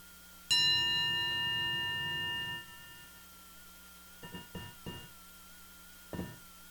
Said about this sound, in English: I will invite the bell while you reflect and write.